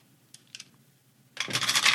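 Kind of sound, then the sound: household object, many dice being rolled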